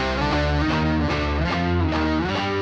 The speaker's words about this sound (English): it's just a way darker distortion, and it kind of doubles the part when it comes in, which significantly ups the intensity. Here it comes. So with all that new distortion, they then repeat that same ascending riff to the G power chord a second time.